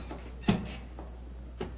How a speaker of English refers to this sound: Look up there, the gallery! The door's opening.